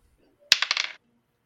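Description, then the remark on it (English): A die, rolled for an attack roll, clatters onto a hard surface with a sharp initial strike followed by several quick rattling bounces that fade out within half a second. “All right, go ahead and make the attack roll.”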